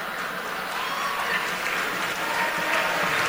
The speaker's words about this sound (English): The smattering of applause where people were really uncomfortable.